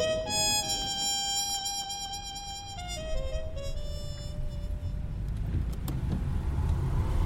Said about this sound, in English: Nice car. Thanks. I got it from a crook I busted a few years ago. I kept it stashed in an old garage just in case it ever needed to come in handy.